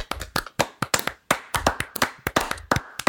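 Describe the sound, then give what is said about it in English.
A few people clap their hands together in quick, sharp, slightly uneven bursts, fairly loud, with no talking over it. “And as we do at the end of every single episode, we are going to clap it out.”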